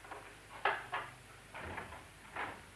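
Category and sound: household object, door being opened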